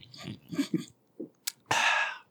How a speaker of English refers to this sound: My guest is eating mac and cheese with her mouth open.